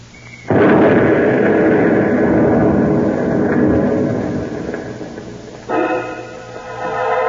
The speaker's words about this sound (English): Near that exploded truck, Mr. Marengo. Suppose other cars come along.